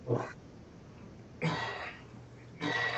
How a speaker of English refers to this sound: Oh, this movie gave me a hiccup.